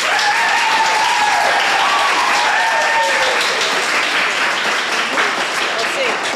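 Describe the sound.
Sustained audience applause for a contestant, a dense, steady wash of many hands clapping at once, with a few voices whooping and cheering through it.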